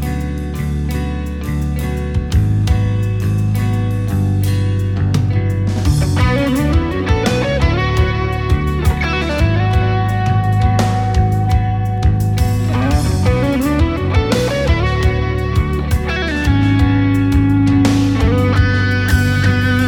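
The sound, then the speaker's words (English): A heavily distorted electric guitar played through the LePou amp simulator plugin plays a loud, thick riff with sustained chords and shifting melodic lines, steady and continuous for the whole stretch with no voices. “Well, let's hear a little bit maybe of the Lepou in action. What's a good song that maybe you think demonstrates that tone?”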